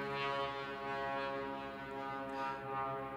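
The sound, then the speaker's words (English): A steady, droning engine hum from an airplane passing overhead, its buzzing tone holding unbroken for a few seconds with a gentle swell in loudness, no voices present. “Oh, there's a plane.”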